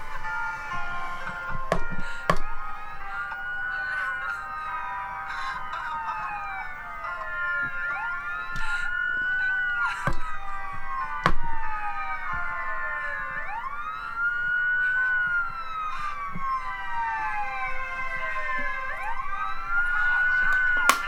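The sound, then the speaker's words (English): An ambulance siren wails steadily, its pitch sweeping up and down in long repeating cycles, fairly loud and constant throughout with a few sharp knocks in the background and no talking. “And there's an ambulance coming.”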